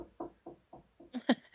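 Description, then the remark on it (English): A quick run of about eight knocks in a steady rhythm, starting soft and growing louder and sharper over the last few raps. “You're knocking again.”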